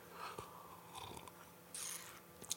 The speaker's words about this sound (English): Anyway, one more sip of beer and then we'll wrap it up.